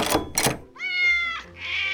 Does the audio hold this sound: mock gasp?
no